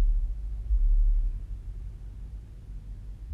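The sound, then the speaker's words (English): Deep, heavy bass booms from a car stereo, swelling loudest early on and then thumping on at a steady low rumble, with no talking. “Somebody's bass in their car is so loud right now.”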